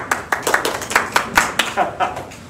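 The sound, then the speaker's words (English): A single person claps about a dozen times in a quick, steady rhythm, each clap sharp, with faint room noise in the gaps, applauding someone doing a back-muscle exercise. “Good work, good work. I'll clap for you.”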